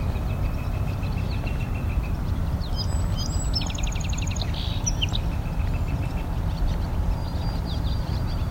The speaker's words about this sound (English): There's the barn swallow singing.